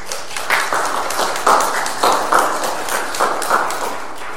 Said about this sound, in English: Inspiring us to applaud a sermon, but also to applaud your efforts.